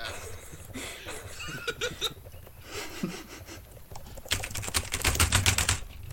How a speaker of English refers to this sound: You know, if I tap my keyboard too fast, it just freezes my computer. It's a good computer. This whole podcast is just gonna be fucking keyboards.